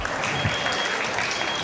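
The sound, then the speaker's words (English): A crowd claps steadily in a dense, continuous wash of applause for the first four Berkeley Lab scientist speakers, who beat the timer, fairly loud and sustained throughout with no pauses, while a faint voice or two can be heard underneath. “Okay, so we're halfway through, so how about a round of applause for the first four?”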